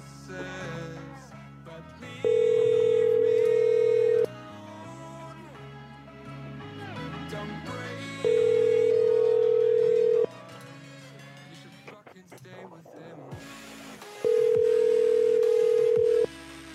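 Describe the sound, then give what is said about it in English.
A telephone line tone sounds three times while calling back American Express, each a steady two-second pitched beep separated by even pauses, layered over continuous background music. No one speaks. “do you want to call back as the supervisor?”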